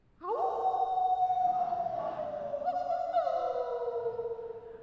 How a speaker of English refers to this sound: The silence was broken by the distant echo of a lonely howling in the void.